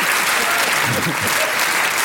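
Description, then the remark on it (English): Steady, loud audience applause: dense crackling claps fill the whole stretch without a break, with a faint murmur of voices underneath. “You can't stop applauding.”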